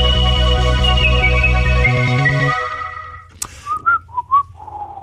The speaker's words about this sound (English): My whistling was better